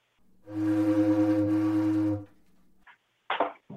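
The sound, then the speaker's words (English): A single long, low ocean liner whistle, played on a Ludwig 4-in-1 whistle, blows steadily for nearly two seconds, a deep, rich, horn-like tone, then stops and is followed by a couple of brief, faint noises. “And the Ludwig 4-in-1 whistle was meant to, like, save space. Hmm. You know, the ocean liner.”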